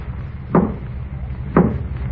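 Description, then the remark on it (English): Two firm knocks on a basement door, spaced about a second apart, each a dull wooden thud over a low, steady background hum. “Knock at the Door”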